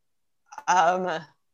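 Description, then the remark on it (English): A single sneeze: a quick catch of breath, then one loud, voiced burst lasting about half a second before cutting off, with no other sound around it. “Bless you.”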